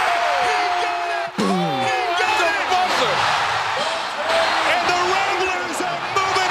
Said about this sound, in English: The fans are going crazy. Great celebration.